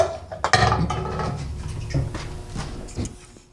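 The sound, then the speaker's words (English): A sharp metallic crack as the tab of a new can of LaCroix sparkling water pops, followed by a hissing fizz that fades over a few seconds, with a few light clinks and taps afterward. “Well, would you like to hear me open a new one?”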